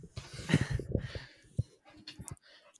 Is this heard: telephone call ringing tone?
no